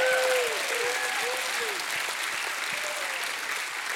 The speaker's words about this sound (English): I'll give God a hand clap and a shout of praise.